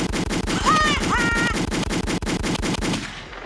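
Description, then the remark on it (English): Rapid, continuous bursts of automatic gunfire rattle loudly in an even rhythm for about three seconds, with a brief rising whistle-like tone mixed in before the shots cut off. “Gunshots in the chat, please.”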